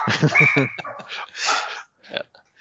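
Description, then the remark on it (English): A dog barks and yips in a quick run of agitated, loud bursts with a whiny, tonal edge, reacting to a knock on the front door, then a short pause and one last sharp yelp. “Yeah, your pup is upset about something.”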